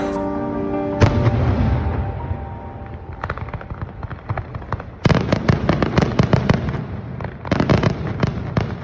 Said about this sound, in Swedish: För klockan 6 på morgonen, då skjuter de nämligen ett kanonskott och en jäkla fyrverkeri.